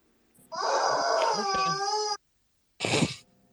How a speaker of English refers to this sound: Nah, we bought a rubber chicken, dude. Do you even have like a dog? No, it's not a dog toy. It's a human toy. It's a rubber chicken.